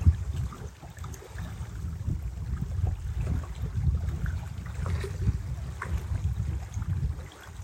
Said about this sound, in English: The waves are singing to all of us.